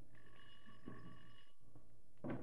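A bell rings in one steady, sustained burst of about a second, a faint bright metallic tone with no talking, followed shortly by a brief low knock.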